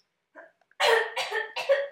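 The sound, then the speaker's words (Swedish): A soft throat sound, then three quick, harsh coughs in a row, fairly loud, with no talking around them. “Så att om ni hör någon som klickar lite på en dator. På knapparna så här. Eller kanske hostar eller något.”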